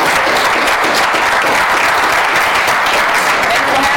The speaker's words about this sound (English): I want to, can we all give a round of applause to everybody?